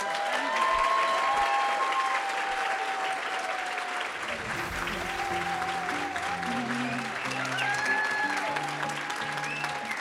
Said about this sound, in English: Crowd noise for the recording.